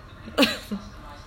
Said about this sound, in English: Sorry, I got something in my throat. You good? You gonna cough up a lung?